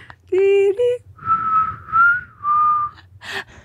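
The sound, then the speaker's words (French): A person whistles a short tune up close: a few quick opening notes, then three longer held notes with slight pitch bends, ending in a brief breathy puff. “Je suis aussi sifflée, je pourrais même pas faire son personnage.”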